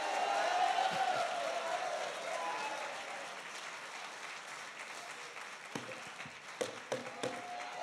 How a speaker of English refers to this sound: If you believe that, take 10 seconds, clap your hands, and give God a mighty, mighty shout.